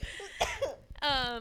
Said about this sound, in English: I actually just had a cough. That was just really well timed.